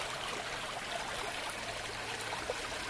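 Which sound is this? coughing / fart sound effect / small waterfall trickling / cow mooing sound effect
small waterfall trickling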